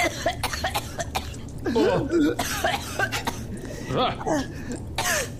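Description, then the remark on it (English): A woman coughs and sputters as a piece of wire comes out of her esophagus, in a series of harsh, wet bursts, with strained gasping and throat-clearing sounds between them. “And she coughs and sputters as the final piece of the wire comes out of her esophagus.”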